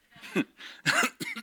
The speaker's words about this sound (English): Oh, it's a creepy cough too.